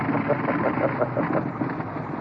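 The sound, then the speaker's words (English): A World War II biplane's aircraft engine drones steadily and loudly with a rough, throbbing pulse and a faint windy hiss, running without a break for a couple of seconds. “I've got the sounds of other aircraft engines of the period.”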